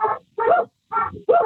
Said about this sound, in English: Awesome. And so, because you're a real farmer, out on a real farm, we can hear your real dogs barking.